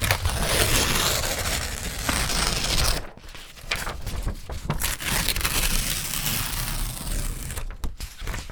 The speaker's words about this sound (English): And sort of like the recording I've given is like ripping paper